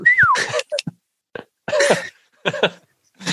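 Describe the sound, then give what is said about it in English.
A person imitates a fox call: a short downward-sliding whistle followed by quick clicks and breathy, throaty bursts, repeated a couple of times with brief pauses. “So A, he does a whistle and then followed by two clicks right after it.”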